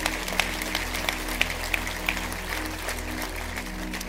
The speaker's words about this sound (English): Can we at all campuses, can we encourage them and clap for them right now?